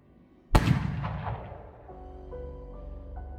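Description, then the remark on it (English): A single loud gunshot cracks nearby, its sharp blast echoing and decaying over a couple of seconds into a low rumble with faint tonal hum beneath. “As the two of you head for the door, a gunshot rings out.”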